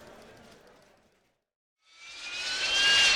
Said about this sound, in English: I see the jet is warmed up and ready to go.